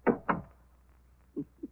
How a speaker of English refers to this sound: Close the door to the body vault. Funny things happen in the morgue.